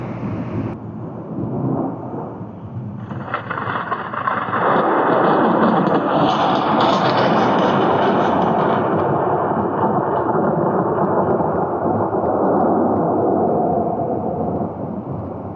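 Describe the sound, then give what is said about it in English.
A thunderstorm with heavy rain, where a deep rolling thunderclap swells after a few seconds into a long, loud, sustained rumble. No voices. “He was born at the stroke of midnight on July 10, 1856, during an electrical storm, a prophetic beginning for the child who is to be known as the father of electricity.”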